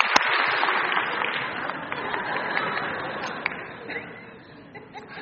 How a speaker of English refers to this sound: And today is his birthday, and I think he's somewhere in here. So can we give him a one clap happy birthday?